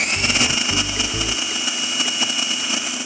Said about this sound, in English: So what we're going to do is we're going to start the food processor, and then you're going to pour that through the little feed tube on the top really, really slowly while we process it.